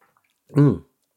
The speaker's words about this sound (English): First sips.